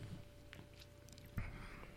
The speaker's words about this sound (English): I had them bring you some Brewing Guaybera Citra Pale Ale. And who is this by? Cigar City Brewery. That's your favorite brewery. It is. Well, let's give this sucker a sip.